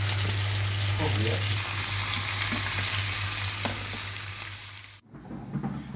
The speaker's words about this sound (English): They all fit rather nicely in the pan, and it is. So there we go. Fish frying in the pan. Yeah.